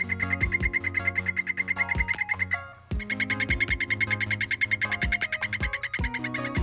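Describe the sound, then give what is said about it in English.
A golden poison frog gives a rapid, buzzy high-pitched trill, loud, in two long unbroken bouts with a brief pause between them. The pulsing sounds a bit like a sputtering engine. “The call of the golden poison frog is a high-pitched trill and sounds almost like a car that won't start.”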